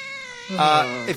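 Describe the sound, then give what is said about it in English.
A cat lets out a single drawn-out meow, fairly loud, rising in pitch and then sliding down at the end, with no talking over it. “Well, my cat really likes me when I give him food.”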